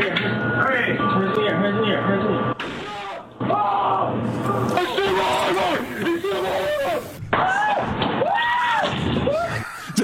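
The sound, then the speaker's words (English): A sharp gunshot bang cuts through a grainy, low-fidelity recording full of loud, agitated shouting voices, with muffled thumps and crowd noise around it. “You're going to hear a gunshot here through this somewhat grainy audio.”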